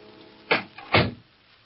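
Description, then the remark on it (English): An office door opens with two solid, muffled clunks about half a second apart, the latch and then the swing, against a quiet background. “I opened the door and wished I'd gone straight home.”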